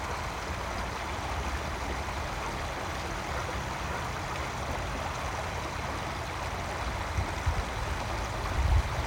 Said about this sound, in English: Before I go, like I mentioned earlier, this was the first time I've spoken next to water.